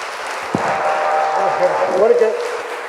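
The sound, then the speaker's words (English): The Authentic Church audience stands, claps and applauds in a steady, dense wash of hand claps to welcome a guest speaker, with a voice rising briefly over the noise. “But without further ado, Authentic Church, will you please stand and clap your hands and welcome my friend”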